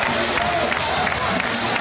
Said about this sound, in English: All right, let's hear the Rutgers football chant. Are the fans cheering at Rutgers Stadium? Here it goes. I hear nothing but clapping. Yeah, look at people jumping around.